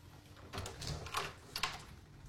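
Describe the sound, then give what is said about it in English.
A door is opened in answer to a ringing doorbell, with a short series of soft clunks and a brief scraping slide, fairly quiet, with no voices. “So, that was me going to the door.”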